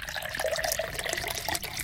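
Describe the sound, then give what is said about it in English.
Liquid pours steadily into a nondescript vessel, a continuous splashing gurgle whose pitch rises slightly as the container fills, with no voices over it. “You can hear it rising.”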